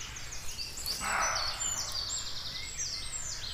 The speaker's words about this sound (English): We walk into the woods and something doesn't want us there. I'd never had a roe deer bark at me before, but I have now. And he sounds angry.